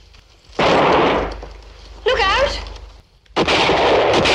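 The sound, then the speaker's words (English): Three loud, booming gunshots fired at grouse during a grouse shoot on the morning of August 12th, each ringing out briefly before fading, with a man shouting a quick warning between the second and third blasts. “Then on the morning of August the 12th, we get out our guns and we see how many of them we can kill.”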